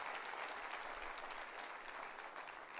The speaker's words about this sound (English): Would you clap your hands and rejoice in that thing?